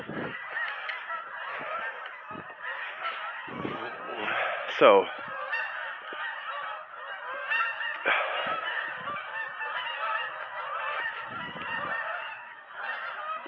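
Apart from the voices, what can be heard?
geese honking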